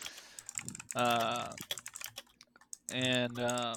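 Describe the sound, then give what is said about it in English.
Rapid, clattering computer keyboard typing: a dense, uneven run of sharp, prominent clicks, with two long voiced tones sounding over the keystrokes partway through. “That's the loudest keyboard I've ever heard in my entire life.”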